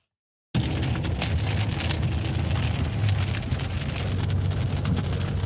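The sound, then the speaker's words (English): Steady, heavy rain pours down after a brief moment of silence, a dense continuous hiss with scattered drops pattering, no voices present. “The forecast was... Rain.”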